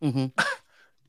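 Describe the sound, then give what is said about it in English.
A single voice mimics a basketball swishing nothing but net on Kevin Porter Jr.'s buzzer beater: a short voiced hum, then a breathy, throaty burst that trails off into a faint hiss. Brief, about a second, with no other sounds. “He hit that buzzer beater. He hit it, right? Nothing but net. That's the sound.”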